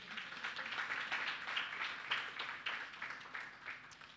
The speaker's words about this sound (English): This is the word of the Lord. That certainly deserved a round of applause.